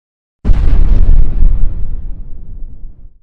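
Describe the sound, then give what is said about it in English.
A sudden, powerful explosion bursts in with a deep, heavy roar that rumbles on and slowly fades over about three seconds, with no voices. “The shockwave hit us. I tumbled through a world that was being torn apart at the seams.”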